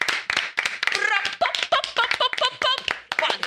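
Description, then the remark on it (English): An audience breaks into applause for a musical guest being introduced: dense, rapid clapping from many hands, fairly loud and steady throughout, with voices whooping and cheering over it. “Ladies and gentlemen, little applause break.”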